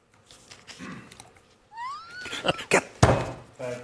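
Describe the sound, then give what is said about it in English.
A TV news host angrily pounds his desk with his fist in a few heavy, dull thumps in quick succession, the last one loudest, after a brief rising chirpy sound and some faint shuffling. “Punches his desk.”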